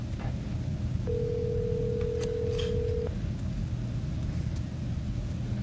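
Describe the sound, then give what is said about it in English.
A phone line rings once on an outgoing call, a steady two-second tone over a low, constant background rumble, followed by quiet waiting; no one speaks. “And Nate, let's go ahead and get Sam on the phone.”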